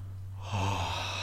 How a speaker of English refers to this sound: Yawn can happen automatically, but you can induce a yawn as well.